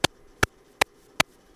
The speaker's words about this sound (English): So this is just a pulse that is going through every single drum machine or drum module. And let's pull a couple other pieces in. So that is just the clock, and I'll keep it audible.